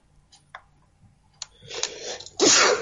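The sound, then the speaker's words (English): A sneeze bursts out near the end: a sharp, loud, breathy blast preceded by a rising inhale, following a few faint clicks and ticks. “Bless you. Sorry.”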